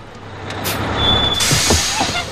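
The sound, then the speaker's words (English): A large bus idles with a low engine rumble, then its air brakes release a loud, sustained hiss as it comes to a stop. “do not get off the bus!”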